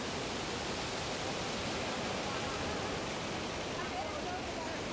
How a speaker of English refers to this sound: So I think we've got a video that we can show really quickly. This is the Jordan River at flood stage.